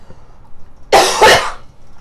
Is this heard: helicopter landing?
no